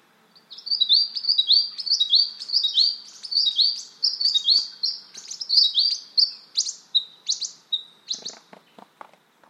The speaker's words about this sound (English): Let's listen to a second recording of an eastern spinebill to hear a different song. This is by Mark Anderson at Woolamai National Park in New South Wales on Wiradjuri country.